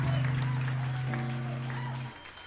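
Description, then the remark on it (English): An audience claps steadily throughout, a dense wash of hand claps running under a sustained low musical tone that cuts off shortly before the end, leaving the applause a little quieter. “You guys are good at clapping, all right.”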